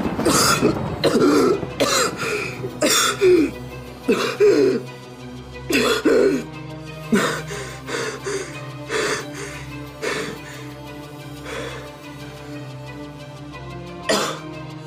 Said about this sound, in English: And you guys don't know this because you guys aren't doctors, so like, and most of you not being sailors, probably aren't familiar with this, but eventually, … cough.